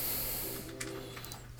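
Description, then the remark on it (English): Heavy, rough breathing blown straight into a microphone: a few short, hissy breath bursts over a steady low electrical hum, with no talking. “Why are you breathing so hard in your mic, boy?”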